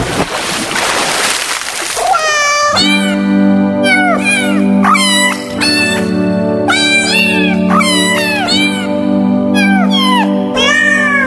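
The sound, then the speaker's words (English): After a brief burst of watery, splashing noise, a cat meows and yowls repeatedly in a loud, roughly regular string of rising and falling cries over a steady low drone. “You would think that when you squeezed them, it would make them hit the high notes better, but it's actually just the opposite for cats. The low notes, you have to squeeze them.”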